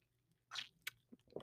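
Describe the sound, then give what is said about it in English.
A few quiet gulping and swallowing sounds from a dry throat, wet throat noises with a sharp click in the middle, followed by softer low gulps, with no talking. “Don't mind my weird gulps in between. My throat is really dry.”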